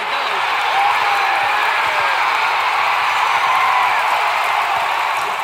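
A large stadium crowd cheers loudly and continuously, a dense roar of many voices with scattered whistles and shouts rising above it, sustained without a break.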